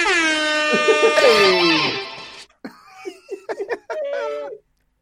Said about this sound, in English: I want the rest of the show for you to fucking search for the air horn. Oh, shit, here it is.